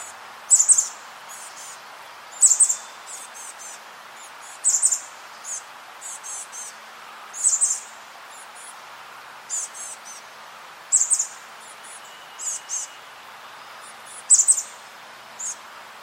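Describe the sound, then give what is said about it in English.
Chestnut-backed chickadee calls: short, high, buzzy chips repeated in small bursts about every one to two seconds, over a faint steady hiss of background noise. “And so just for reference, I'll go ahead and play chestnut-backed chickadee calls here.”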